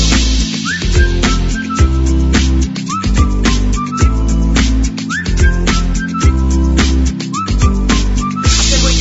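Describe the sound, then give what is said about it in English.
A whistle blown in short rising toots, repeating four times in a steady rhythm over a loud, thumping drum-and-bass beat. “Can you blow that whistle? You say whistle, we say.”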